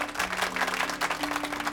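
A crowd applauds indoors, many hands clapping in a dense, steady patter over a low sustained hum, with no one speaking.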